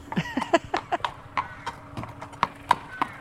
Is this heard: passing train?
no